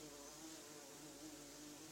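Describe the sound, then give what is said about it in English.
A bee hums steadily, its droning buzz holding an even pitch and volume for the full two seconds with no voices or other sounds around it. “It's a bee over there.”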